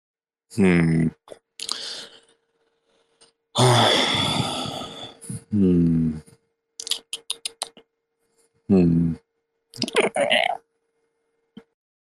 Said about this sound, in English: I didn't realize how my gulp sounded before I did the recording the other day of one of my gulps. Let me do it again. How do you just gulp? You just swallow some saliva.